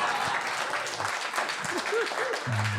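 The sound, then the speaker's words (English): At a Harmontown live show, a crowd breaks into steady, dense applause for audience members who stood up, many hands clapping at once in a continuous wash of noise, with a few faint voices calling out beneath it. “Get a round of applause.”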